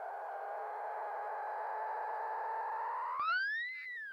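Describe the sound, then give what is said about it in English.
A mother dolphin with her calf gives a long, steady whistle that holds one pitch for about three seconds, then sweeps sharply upward and arcs back down. It is clear, with no talking. Recording from the Sarasota Dolphin Research Program. “And now we have a clip of Mama Dolphin with her baby.”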